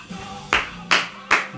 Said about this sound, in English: Applause!